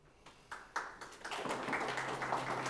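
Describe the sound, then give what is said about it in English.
Scattered handclaps start sparse and quickly swell into a steady burst of audience applause, dense, bright and sustained by the end, with no voices over it. “You can just clap because you're glad it's over.”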